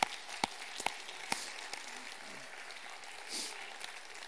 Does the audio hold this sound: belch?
no